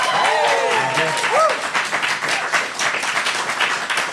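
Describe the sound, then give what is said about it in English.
An audience applauds to vote for the Sarlacc in a steady, dense patter of claps lasting several seconds, with a few voices whooping and calling out near the start. “A golf clap for the Sarlacc.”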